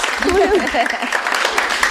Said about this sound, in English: This is her first book, so I feel like that's a very special, it's a very special night for you. Yeah. I'm, like, yeah. Applause.